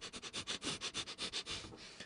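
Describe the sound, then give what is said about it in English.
A rapid run of short nasal sniffs, about ten in quick rhythm, ending in a longer drawn-in inhale as someone breathes in a smell. No talking. “Used to sniff Sharpies in elementary school.”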